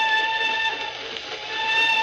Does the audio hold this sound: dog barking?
no